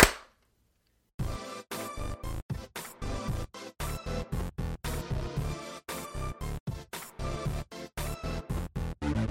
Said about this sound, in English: Okay, and we'll do the clap. Okay. One, two, three.